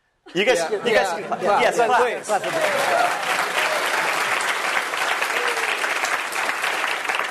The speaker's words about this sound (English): Clap again. Let's just keep this going.